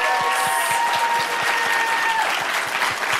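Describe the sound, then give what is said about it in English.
Loud, sustained applause from an audience, a dense wash of clapping with some sharper individual claps and faint cheering tones on top, steady throughout with no talking. “So let's have a big round of applause for all of our incredible new voices.”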